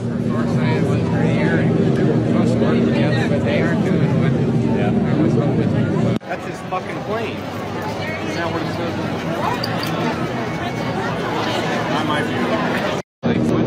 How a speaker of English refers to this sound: The ultimate flyby from Trump Force One